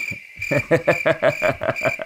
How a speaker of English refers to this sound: I don't know why that deserves crickets. It doesn't, but I have control of it. Crickets.